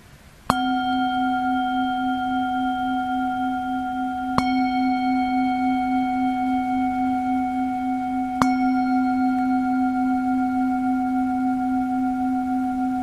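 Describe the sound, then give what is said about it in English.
A meditation bell is struck three times at steady intervals of about four seconds, each strike adding to a sustained, humming low tone with bright overtones that rings on without fading. No one speaks. “Notice the transformations that might happen in the body, in the mind, with the bell ringing.”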